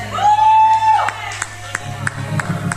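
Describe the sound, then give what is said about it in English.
A sustained whistle-like whoop from an audience gives way to a few scattered, uneven claps over a low crowd murmur. “It's okay to clap if you get it.”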